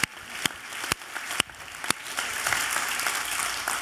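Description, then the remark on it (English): An audience claps for Jesus, starting with a few sharp, evenly spaced claps that quickly swell into steady, dense applause from a crowd, with no talking over it. “Can we clap for this name right now? Can we clap for Jesus?”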